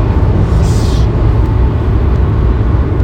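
Loud, steady low rumble of a car driving along in traffic, a continuous engine and road drone with no voices and no distinct events standing out.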